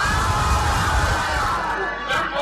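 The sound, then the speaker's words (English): A chorus of legislators in the House shouts aye together in a voice vote in favour of the motion listed 12 on the day's order paper, a loud, dense wall of overlapping voices that holds steady for a couple of seconds before easing slightly. “Honourable members, all those in favour of the motion listed 12 in today's order paper say aye.”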